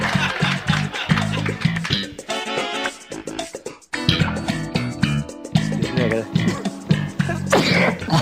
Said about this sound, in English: Just a little sneeze. Stunts always make me sneeze.